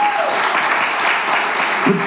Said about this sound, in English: Yeah, let's clap for that. Eso merece un aplauso, sí.